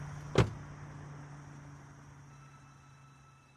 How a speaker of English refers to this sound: The engine growled behind her. She felt that in her bones. Then she felt the door slam.